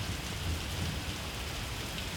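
Steady rain pours down at night in a continuous, even hiss with a dense patter of drops and a faint low rumble underneath, heard alone with no voices.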